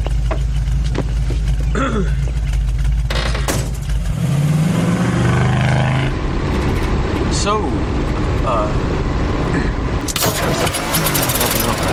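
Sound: car engine revving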